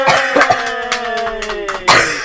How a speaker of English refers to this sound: Just every day, every episode, you're just gonna start coughing. Every episode, you're gonna start coughing.